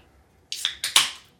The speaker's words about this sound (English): Well, it still sounds like a regular beer can. Yes, it does sound like beer.